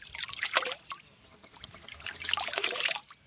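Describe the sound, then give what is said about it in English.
Clear water trickles and splashes in a steady, bubbling flow at a deep blue spring near Putaruru in South Waikato, New Zealand, with brighter gurgling bursts rising and falling over a quiet outdoor background. “The beautiful blue spring near Putaruru in South Waikato.”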